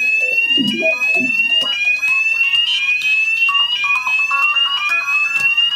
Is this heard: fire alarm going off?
yes